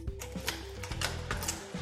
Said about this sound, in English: You slot the green token into the purple door, and it falls, the mechanism clicks, the door swings open.